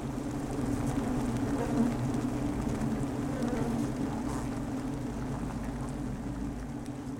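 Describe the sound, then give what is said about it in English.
Bees at a beehive chewing wax and sticking it together into hexagonal honeycomb cells: a steady, low droning buzz layered with a fine, dry, crackling chew, continuous and even throughout with no voices. “So I spent several hours a day down at the beehive with my headphones on, listening to them chewing the wax and sticking it all together in these hexagonal shapes.”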